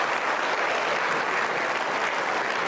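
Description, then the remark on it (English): Steady applause from an audience, a dense wash of many hands clapping at once, holding an even loudness throughout with no voices breaking through. “Wow, you guys clap for that?”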